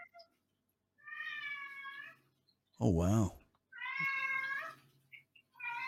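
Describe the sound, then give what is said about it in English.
A pet cat meows repeatedly in long, drawn-out, whiny cries, two full meows and the start of a third, with a person briefly exclaiming loudly between them. “Is that your cat? Yes, that would be my cat.”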